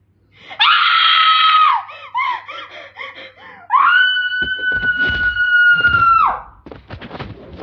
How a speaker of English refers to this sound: Hey, is everything okay in there? We heard screaming.